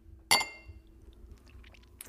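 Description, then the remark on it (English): A single bright clink of a glass rings out, followed by faint sipping and swallowing sounds as someone tastes a Cinnamon Toast Crunch cocktail shot made with RumChata, with no talking. “So let's give it a little taste test, shall we?”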